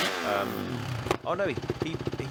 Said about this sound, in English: So the bike is revving and push it to the limit. Yeah, and starts pushing the bulldozer.